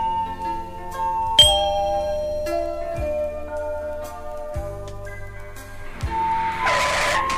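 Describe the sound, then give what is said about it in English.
A single bright chime rings out near the start and fades slowly over a soft, steady musical background with low pulses, signalling the listener to turn the page of a read-along book. No one speaks. “Remember to turn the page each time you hear the chime.”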